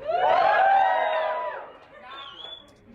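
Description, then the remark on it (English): A thin, half-hearted cheer from a few audience members answering a comedian's question of whether they're having fun and whether the jokes are funny: overlapping rising and falling whoops that swell for about a second and a half, then fade to a low murmur. No clapping follows. “Okay, so I would say a cheer, significantly lower cheer. There was no claps.”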